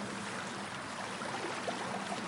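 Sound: flowing stream water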